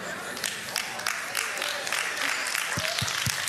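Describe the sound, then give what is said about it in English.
Scattered audience claps ring out at an uneven pace over a steady crowd murmur, a handful of hands joining in without ever building into full applause. “If you're gonna clap, clap.”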